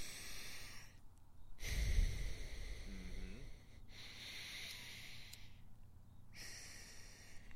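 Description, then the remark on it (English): A person demonstrates alternate nostril breathing, breathing slowly and audibly through the nose in several long, airy inhales and exhales, separated by brief pauses, with no talking. “I've started doing the, like, alternating nostril breathing.”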